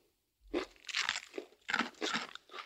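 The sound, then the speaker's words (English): A fortune cookie is bitten and chewed, giving a run of sharp, dry crunches in uneven bursts, fairly loud with brief pauses between them and no talking. “Don't eat your fortune cookie.”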